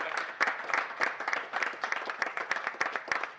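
A crowd applauds, many hands clapping in a dense, steady patter with sharp individual claps poking through. No voices stand out over the clapping.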